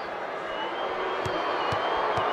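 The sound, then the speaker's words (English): A dense, steady roar of an arena crowd cheering and applauding at a Utah Jazz basketball game as LeBron ends up on the floor, loud and sustained, with a few sharp thumps punctuating it. “The crowd loves it.”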